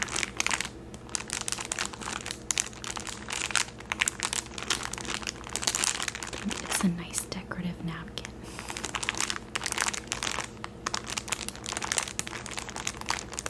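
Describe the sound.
Continuous crinkling of plastic packaging around decorative paper napkins printed with three pumpkins and a cat, with dense crackly bursts throughout and a soft murmur of whispery voice underneath.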